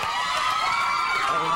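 A loud, steady wash of crowd noise, many voices cheering and whooping together for a second and a half without pause.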